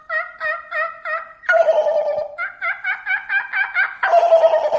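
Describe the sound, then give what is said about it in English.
A person imitates a turkey gobble: quick, warbling, rattling bursts repeated in a steady rhythm, broken by two rougher, denser gobbling outbursts, with no talking. “I can kind of gobble”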